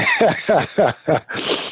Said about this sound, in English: I would have kept on talking. Sorry, but I had to cough.